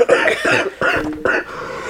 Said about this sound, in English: One second, let me cough. Sorry.